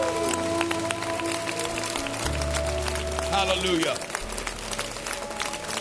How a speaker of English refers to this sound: If you're ready for a new anointing, give the Lord a clap offering one more time. Amen.